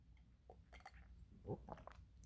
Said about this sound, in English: Let me grab a sip of water.